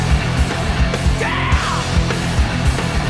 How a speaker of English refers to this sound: Can I scream?